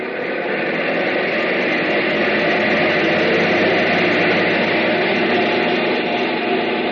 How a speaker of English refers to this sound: That's why we have these captive engines. Engines that don't ever get a chance to fly. No glorious destiny for these babies. They just run their hearts out on a test block. Bring number one engine up to maximum RPM.